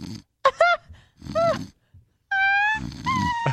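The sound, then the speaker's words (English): A person imitates a woman snoring with a series of loud, growly snorts and drawn-out groaning tones, separated by brief pauses, with no talking. “And you hear her snoring?”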